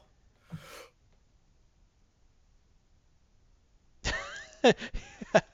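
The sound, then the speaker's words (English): A lone sharp hiccup, then after a pause a quick run of several more jerky, gulping hiccups, fairly loud with no talking. “Oh, I gave you hiccups.”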